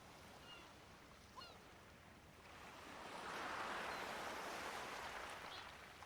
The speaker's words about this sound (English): Hear the gentle rush of waves on the shore.